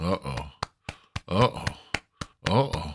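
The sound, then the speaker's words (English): Six or seven sharp hand claps land at an uneven pace, crisp and bright, with a voice vocalizing and cheering loudly in between them. “I got the clap going on.”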